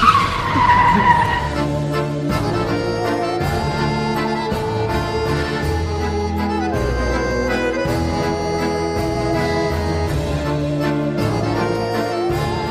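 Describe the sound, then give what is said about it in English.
A car engine roars as tires screech and skid in a sharp opening squeal, followed by a steady, loud mechanical drone that holds for the rest of the stretch. “Let's just get in the car.”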